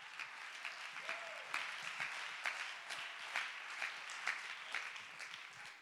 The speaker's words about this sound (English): Clap your hand and give God the praise.